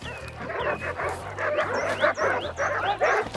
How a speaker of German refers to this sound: Aber die Hunde waren außer sich vor Freude. Es war nicht leicht, sie an die Leine zu nehmen.